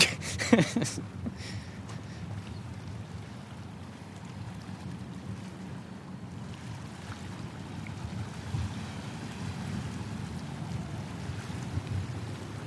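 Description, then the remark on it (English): Ocean waves washing ashore in a steady, continuous roar of surf with a low rumble, moderately loud and mixed with wind noise, after a brief clatter at the very start. “Well, maybe I'll walk down to the water and people can get a sense of what that sounds like.”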